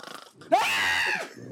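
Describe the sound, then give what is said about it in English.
A person with eyes shut fakes a snore: one loud, rasping, nasal snort lasting under a second, rising abruptly and then cutting off, with quieter breathy sounds before and after. “Okay, just so you guys know, like for shits and giggles, I just shut my eyes and like snored for effect,”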